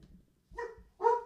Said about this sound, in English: Shut up, dog.